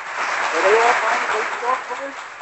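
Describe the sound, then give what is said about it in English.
A dense wash of recorded studio audience applause, many hands clapping steadily at a fairly loud level, with scattered cheering voices mixed in throughout the short burst; a taped studio audience played in a studio in place of a real audience. “Let's put our hands together and give him a roaring round of applause.”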